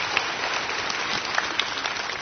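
Audience applause fills the space, a dense, steady wash of many hands clapping with a few sharper claps popping out, sustained evenly throughout with no voices.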